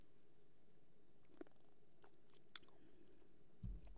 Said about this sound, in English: And without further ado, first sip.